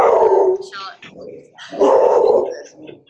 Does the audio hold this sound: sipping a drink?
no